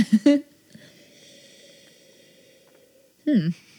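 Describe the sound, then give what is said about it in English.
Breathy sniffing of wine in a glass: a couple of quick sharp inhales at the start, a hushed pause, then another short burst of sniffing near the end. “if I sniff it like this, I can.”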